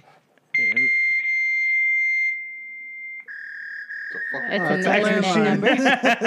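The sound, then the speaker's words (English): A fax machine tone sounds over a phone line: a steady, piercing high whine for a couple of seconds, then a slightly lower sustained tone, before voices start talking over it. “Oh, I guess we have to fax her or something.”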